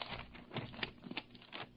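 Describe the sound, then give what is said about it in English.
Crisp rustling and crinkling of paper as a newspaper taken from a found boy's pocket is handled and unfolded, with a few sharper crackles among continuous soft patter, and no voices. “Read the headline on this paper that was in his pocket.”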